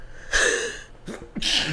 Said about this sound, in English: I got to sneeze.